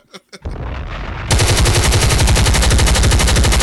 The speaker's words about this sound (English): Yeah, he's shooting that pistol, ain't he?